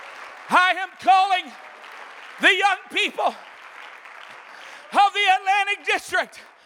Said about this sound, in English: Come on, give God a hand clap of praise right now.